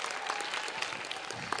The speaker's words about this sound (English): Well, this definitely could not have been possible, one, without our kids and our parents. So give yourselves a round of applause, please.